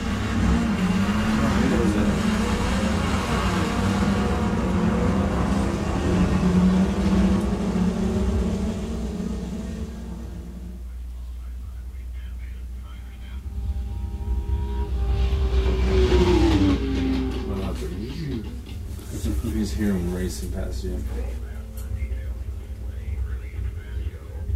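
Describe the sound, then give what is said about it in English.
Sports car racing at a racetrack: engines roar and whine, their pitch climbing and dropping as cars speed past, with a loud, sustained stretch before a brief lull and another pass. “There's sports car racing going on there, and the sounds are just tremendous.”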